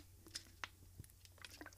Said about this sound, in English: Let me take a quick sip of water for a second. Take this water break.